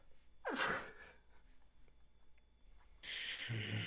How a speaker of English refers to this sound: did I mute myself in time? Did you? I had to sneeze. I don't know. I hope I did.